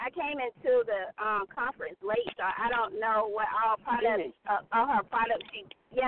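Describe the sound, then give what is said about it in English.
A woman talks over a thin, tinny phone line from her car in an area of bad reception, her voice clipped and choppy with abrupt dropouts and gaps that chop her sentences into fragments. “you're breaking up very badly.”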